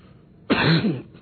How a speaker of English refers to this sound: Forgive me that I'm coughing. It's all the Abelkuta and everything.